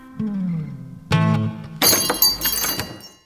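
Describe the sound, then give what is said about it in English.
A shop door bell rings as someone enters the shop, two sustained tonal chimes followed by a bright, clattering burst of metallic jingling that lasts about a second. No one speaks. “Oh, the store bell. Someone has entered my shop.”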